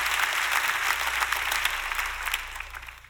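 An audience at a church service claps their hands together in response to a call to show they are ready to hear the word. It is a dense, continuous patter of many claps, steady and fairly loud before thinning slightly at the end, with a low hum underneath.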